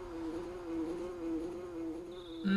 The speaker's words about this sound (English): Do you hear a buzzing sound? Sounds like a bee flying around.